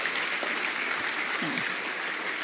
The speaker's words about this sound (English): Please give these mums another clap. Thank you, ladies.